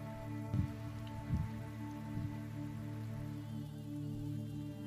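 Steady rain falls in a continuous, even hiss, with a few soft low thumps early on and a faint droning hum underneath; no one speaks.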